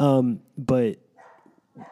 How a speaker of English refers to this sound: And now our neighbor's dog. Multiple dogs happening at the moment.